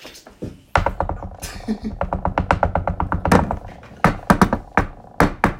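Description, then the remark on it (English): Rapid knocking on wood, picked up by a microphone, in quick bursts: a dense rattling series of sharp taps like a woodpecker, followed by a few louder separate knocks, with people talking over it. “knock on that wood, all right?”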